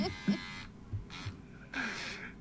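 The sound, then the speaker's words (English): Electric hair clippers buzz with a steady droning whine that cuts off, followed by two rougher, noisier bursts as the motor starts and stops unevenly, jamming on hair stiffened with hair gel while cutting someone's hair. “You're jamming up my buzzer.”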